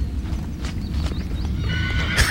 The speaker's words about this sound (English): Anyway, another horse whinnying, and here we go, which I didn't even know was a thing until...